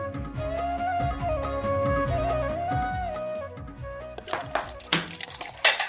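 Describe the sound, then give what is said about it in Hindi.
Dishes and pots clatter as they're washed at home, with a few sharp metallic clanks near the end, heard over a steady melodic music bed. “भाई बर्तन ही धुलते रहेंगे या फिर कुछ नाश्ता भी मिलेगा?”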